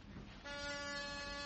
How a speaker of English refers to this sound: Which way is suite 300? Staring you right in the face, McGee. I'll press the buzzer.